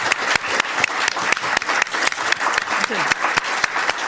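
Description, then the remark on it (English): An audience claps steadily for several seconds at the end of a panel discussion, a dense, loud patter of many hands with a few sharper individual claps standing out, no voices on top. “Could you show a round of applause, thank please?”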